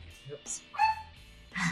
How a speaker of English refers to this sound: We are here at House of the Doll with six dogs in the background.